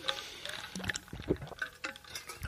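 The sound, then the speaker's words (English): Water is accidentally spilled, splashing in a quick, irregular burst of splattering and dribbling, fairly quiet, with small clattering knocks mixed in and no one talking. “I just spilled water everywhere.”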